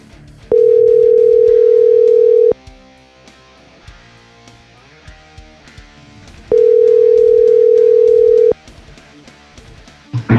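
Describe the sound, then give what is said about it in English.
A phone line rings out twice with the ringback tone of an outgoing call to Darby Allin: two loud, steady two-second tones about four seconds apart, with music playing quietly underneath. “Let me give Darby Allin a call.”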